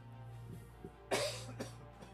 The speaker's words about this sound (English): The spirit that had risen from him before comes back, and you can see the wounds begin to close, and he coughs up a lot of blood and kind of rolls over.